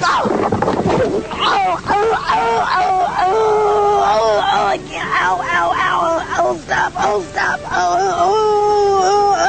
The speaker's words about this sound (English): Have you ever seen the lady crushing grapes? Oh, yeah. And she tips over, yeah, and she knocks the wind out of herself, but she's mic'd up.